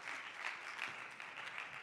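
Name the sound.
audience clapping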